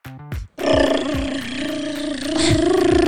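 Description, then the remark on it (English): A voice imitates a drum roll with a buzzy, rolling lip trill that holds steady for a couple of seconds, loud and continuous, after a brief sputtering start. “Oh, we need a drum roll.”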